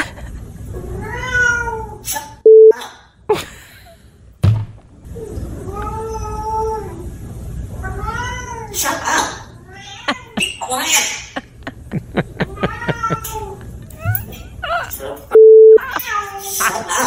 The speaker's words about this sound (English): This parrot lives with a couple of cats. Apparently, the parrot not a big fan of the cats. This is the parrot basically telling the cats to shut up.